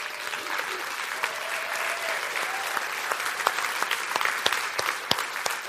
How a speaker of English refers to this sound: If you're a part of the parking team, would you stand up and let us just applaud you and appreciate what you do every week?